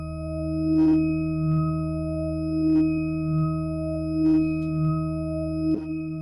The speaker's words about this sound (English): So let me just choose the lowest one so we don't get jitter. So I'll turn on the phaser. I'm going to cut out the high harmonics. Boost the lower ones.